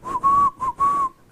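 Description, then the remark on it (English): A person whistles four quick, steady-pitched notes in a short-long-short-long rhythm, fairly loud, with a soft breathy edge and no talking. “Can y'all whistle?”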